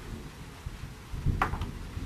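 A low, distant rumble of thunder rolls through a quiet room, swelling briefly near the end with a soft, muffled crackle before fading back into a faint background murmur.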